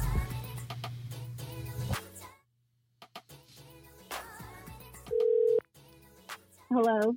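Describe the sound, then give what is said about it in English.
A telephone call being placed: a low steady dial tone, a series of short dialing beeps, then a held tone and a warbling ring, with faint background voices underneath. “Oh shit, you answered the phone.”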